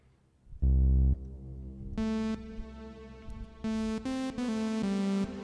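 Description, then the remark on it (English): A plain synthesizer patch on a basic initial preset, with the reverb turned down slightly, plays a handful of short, separate notes, starting with a deep low tone and then brighter, buzzy notes in an uneven rhythm, fairly dry with little echo and no talking. “So, like, if I were to go to an initial preset on this, well, let me take down the reverb just a little.”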